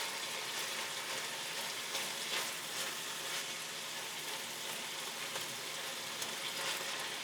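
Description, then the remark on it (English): Onions softening and beef browning in a pan on medium-high heat, a steady, hissing sizzle with scattered crackles and pops across the top of it, continuous throughout with no one talking. “So while my onions soften and my beef browns, it should take about 10 minutes on a medium-high heat”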